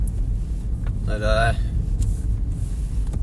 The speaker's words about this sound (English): I'm just in the car right now